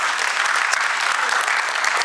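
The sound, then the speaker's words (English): An audience claps steadily for a couple of seconds, a dense, even patter of many hands at moderate loudness with no voices standing out. “Yeah, clap for that.”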